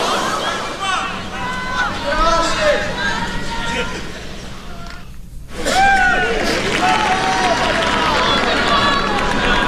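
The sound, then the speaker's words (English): A large tennis crowd at Wimbledon, the All England Club in London, murmurs and chatters in a steady hubbub during the tournament matches, with overlapping voices and occasional rising exclamations; the noise briefly drops away to near silence before the crowd buzz swells back. “That is the crowd at Wimbledon.”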